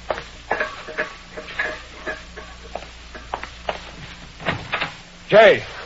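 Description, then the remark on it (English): A series of scattered knocks and clunks, then a heavy door opens near the end with a short, loud, groaning creak. “Now turn off those valves and open that door.”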